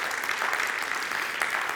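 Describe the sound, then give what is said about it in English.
An audience applauds steadily, a dense wash of many hands clapping at once, sustained and fairly loud throughout with no voices rising above it. “Come on, let's give him a great round of applause.”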